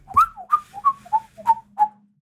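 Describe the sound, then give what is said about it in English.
A person whistles an imitation of an American kestrel call: six sharp, high, slightly falling notes in an even, quick series, each with a crisp attack, with no other sounds. “I've pulled up All About Birds American Kestrel, and I'm trying to think of how the voices are going.”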